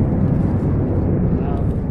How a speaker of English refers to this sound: Hold on, I can't. Fucking airplane bullshit.